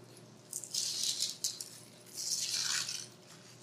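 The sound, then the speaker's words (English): Crinkly plastic rustling of communion packets being peeled open as an audience opens them together during a church communion service, in two bursts with a short pause between, bright and crackly over a faint steady hum, no voices. “So we can all open our communion packets together.”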